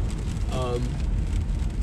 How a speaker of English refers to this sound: Still raining.